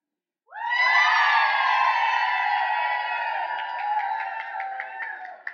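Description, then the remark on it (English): An audience bursts into loud, sustained cheering and screaming to pick a contest winner by cheerometer as the host walks across the stage pointing to people, holding steady for about five seconds with scattered claps and whoops near the end, with no speech. “We're going to go with the old-fashioned cheerometer, right? You know how that works. You cheer.”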